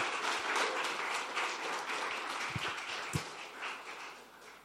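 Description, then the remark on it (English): An audience applauds to thank the worship team, a steady dense wash of many hands clapping at even loudness throughout, with a few sharper individual claps standing out near the end. “Can we please just give them a clap to say thank you?”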